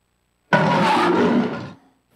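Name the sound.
lions roaring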